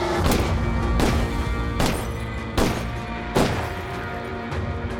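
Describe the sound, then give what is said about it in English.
Gunshots fired from a car's backseat window shatter the driver's side windows of another car: about four sharp, loud cracks at uneven intervals, each with a brief crash, over a dense, rumbling background with no talking. “Rae Carruth watched from his rear view as the gunshot shattered the driver's side windows of”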